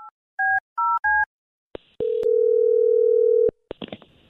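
Three quick keypad tones as a call is placed are followed by a clunk of the line and a steady, loud telephone dial tone humming for about a second and a half, then a few clicks as it cuts off.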